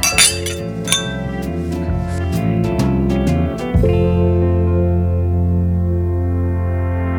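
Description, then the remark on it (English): Several bright glass clinks ring out in quick succession, like glasses tapped together for a toast, over a steady sustained musical tone that carries on after the clinking stops. “Let's get out of this with a toast.”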